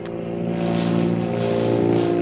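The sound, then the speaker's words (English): A steady, loud seaplane propeller engine drones with strong low harmonic tones and a rising, surging roar as the seaplane rapidly climbs after a speedy takeoff, thousands of feet above the blue Pacific Ocean, with no voices. “after a speedy takeoff, the powerful seaplane rapidly climbs into the air, thousands of feet above the blue Pacific Ocean.”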